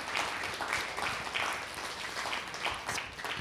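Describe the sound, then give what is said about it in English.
A church audience claps their hands together in sustained applause as worship to God during a morning service, a dense, steady wash of many overlapping claps at moderate loudness without pause. “Can we just worship God just with a hand clap this morning and let him know how much we love him?”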